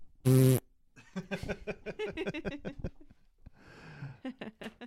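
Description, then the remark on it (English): A short, loud, buzzy raspberry blown with the mouth to imitate a fart, lasting a fraction of a second, followed by people talking and laughing. “I was going to try to really fart, but I'm glad that you just did a mouth sound effect instead.”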